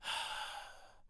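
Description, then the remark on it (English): A voice imitates heavy breathing with one long, breathy exhale, loud at first and fading over about a second before a brief silence. “The breathing was like this.”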